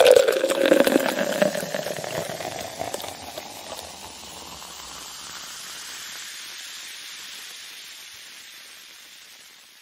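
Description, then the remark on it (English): Half Cab Hazy IPA beer pours into a glass, a loud splashing rush for the first few seconds, then easing into a steady, softer fizz of foam that slowly fades, with no talking. “So a quick beer review. We'll make everybody have to pee. This usually makes people have to pee.”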